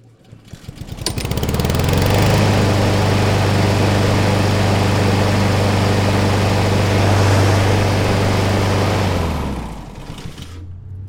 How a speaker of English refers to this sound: All right, let's fire up this lawnmower. See what it sounds like.